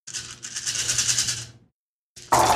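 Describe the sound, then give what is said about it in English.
Dice clatter and rattle in a cup or across a surface for about a second and a half, a dense bright shaking, then a brief pause and a sharper burst of clicks as they land. “So you're going to be rolling 7 dice to damage him.”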